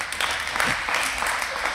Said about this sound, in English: Here's one more for you. 1,676 miles from Troy, Michigan to Salt Lake City. How's that one? Yeah, you can clap. I'm excited about that.